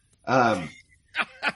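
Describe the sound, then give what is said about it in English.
A sneeze: a drawn-out, strained voiced build-up, then two short, sharp breathy bursts in quick succession, with no other talk. “excuse me. Bless you.”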